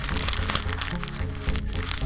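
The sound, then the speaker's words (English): A huge paper envelope is torn open at an awards nominee announcement: a loud, continuous crinkly ripping with sharp crackles running steadily for about two seconds. “It's like the most well-microphoned envelope opening.”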